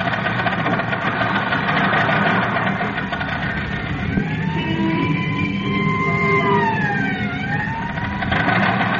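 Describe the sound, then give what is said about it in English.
A loud, steady car engine roar runs throughout on the Mount George Road, and partway in the siren of an ambulance heading up the mountain rises and falls over it, wailing in long sweeping tones before fading back under the racing motor. “And look, Robin. There goes the ambulance up the mountain.”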